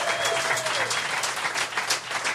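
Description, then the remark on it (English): An audience claps steadily to show who was at the stand-up comedy show, a dense, continuous patter of applause at fairly even loudness from start to finish, with a faint whistle or tone near the beginning. “Now, by applause, who was at the standing-up comedy show?”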